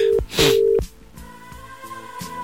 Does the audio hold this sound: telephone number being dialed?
yes